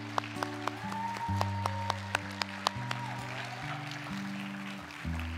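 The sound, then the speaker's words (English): An audience at a church service claps as an offering to the Lord after a prayer, in a steady, dense wash of applause, with a few sharper claps standing out, while sustained low keyboard chords shift slowly underneath. “Come on, let's give the Lord a big clap of offering right there.”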